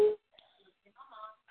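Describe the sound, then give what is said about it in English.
A baby girl vocalizes while her parent is on a phone call: a brief louder squeal at the start, then soft, scattered babbling sounds that are fairly faint and come in short bursts. “I hear my baby.”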